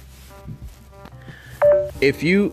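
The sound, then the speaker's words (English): A short electronic low-battery warning beep from a dying phone sounds near the end, a steady clear tone over a murmur of background noise, followed by bits of voiced sound. “My phone dying, shit.”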